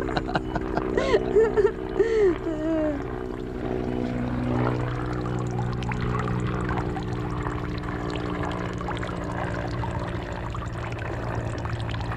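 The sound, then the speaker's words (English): Water trickles and pours steadily from a fountain in a Japanese garden, with a stone lantern behind it, a continuous soft splashing over the low, droning hum of a plane going overhead, with a brief voice sounding in the first few seconds. “And there is a stone lantern just behind the fountain here.”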